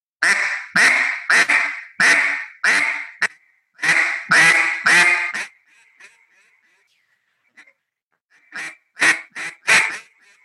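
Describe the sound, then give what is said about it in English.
A duck call is blown to practice a quack cadence, giving loud, raspy quacks in quick rhythmic runs, about a dozen in a row, then a brief silence before a final burst of four more. “starting off just to get a quack, quack, quack, meh, meh, meh, meh”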